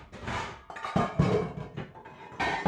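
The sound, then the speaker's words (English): A pile of metal saucepans clatters and clanks as it is moved about, a few loud knocks and rattles in a quick jumbled burst, with no talking. “we'll move these boxes. Oh, and the balls. I love these rackets. Oh, and this pile of saucepans.”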